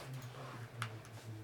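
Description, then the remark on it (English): Faint, sparse ticking clicks, like a clock, come from a computer over a steady low electrical hum. Only a couple of ticks come through, and no one speaks. “Wait, is there a clock in here?”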